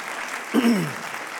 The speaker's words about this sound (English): My notes say they'll clap right there with that verse.